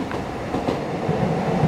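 A steady rumble of a train coming by on a train line, rolling along the tracks, with faint clattering wheels and no voices, holding an even loudness throughout.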